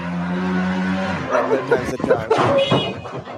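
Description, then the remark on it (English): The steady engine drone of a motorcycle driving down a street holds for about a second, then a dog breaks in with several quick, sharp barks and yips at the motorcycle over the fading motor, fairly loud. “Okay, so it's a motorcycle driving down the street and it's called CrossFit, and then a dog comes out barking at the motorcycle”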